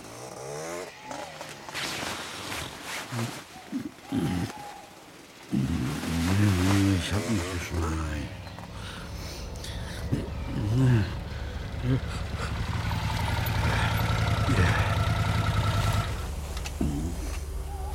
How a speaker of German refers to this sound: Dann endlich mal ein richtiges Motorrad.